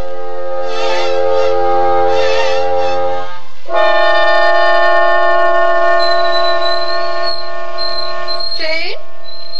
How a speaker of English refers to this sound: Just turn off the tea kettle.